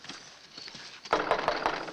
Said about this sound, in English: Somebody'd knock on the door.